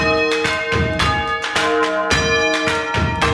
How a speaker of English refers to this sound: and 11 bells are ringing.